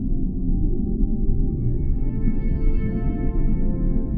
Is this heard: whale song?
yes